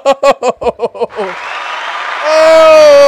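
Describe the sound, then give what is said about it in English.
A burst of rhythmic, voiced laughter gives way to a loud, steady wash of applause from a crowd that swells toward the end, with a sustained tone rising over it. “Head claps all over.”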